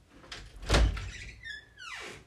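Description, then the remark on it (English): A door opens with a solid thump followed by a brief rising creak or squeak as it swings, heard on its own without any voices. “Don't forget to close the door.”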